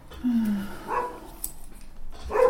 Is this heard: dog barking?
yes